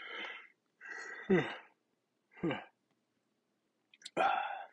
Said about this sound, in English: Newborn dad. Sorry, gotta yawn.